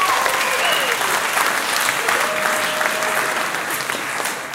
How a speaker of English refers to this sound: Give them a bit of a round of applause as they go off.